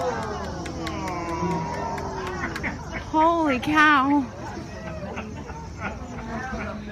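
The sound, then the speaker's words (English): A small group of onlookers outdoors along the shore in the fall murmurs, then bursts into loud, awed exclamations for about a second midway as they react to tree swallows, with steady background babble and faint high chirps or ticks throughout. “Now, you're hearing people reacting to tree swallows.”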